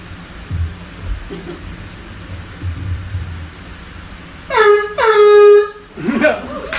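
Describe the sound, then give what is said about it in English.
A voice imitates a foghorn with one loud, sustained, buzzy honk lasting over a second. The pitch dips slightly at the start, and a low, noisy rumble comes before it. “My top two sound effects are foghorn. I got a good foghorn.”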